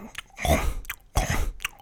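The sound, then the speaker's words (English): A voice imitates the loud crunching of someone eating trail mix during a movie: two harsh, noisy bursts with a few sharp clicks between them, and no speech. “It's not like a crunch in stereo like would happen with trail mix in this case.”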